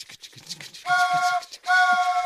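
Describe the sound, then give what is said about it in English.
A train sound effect: two loud, steady horn blasts in quick succession, the second cut off at the end, preceded by a moment of faint, muffled background noise. “You guys want to start that train? Oh, here we go.”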